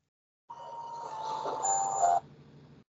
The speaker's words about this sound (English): The heck was that? some random alert on my phone. I have no idea what it was. It sounded like the NFL draft. I thought it was more sounded like Mulder and Scully.